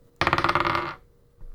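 Dice are rolled for an intelligence check in a game, clattering and rattling across a hard surface in a quick burst of rapid clicks lasting under a second, then settling into quiet with a faint low rumble afterward.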